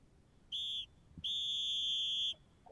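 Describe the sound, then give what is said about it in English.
A shrill referee whistle blows twice for halftime, a short blast followed by a longer sustained one, loud and piercing with no talking over it. “It's loud. Halftime. Whistle gotcha.”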